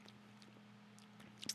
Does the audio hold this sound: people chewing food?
yes